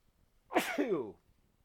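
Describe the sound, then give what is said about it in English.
A single sneeze bursts out, a sharp breathy blast trailing into a short voiced tail, with quiet silence on either side. “Yay, spring. Gesundheit.”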